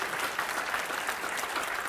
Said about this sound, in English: You need to clap your hands again. I think that's awesome.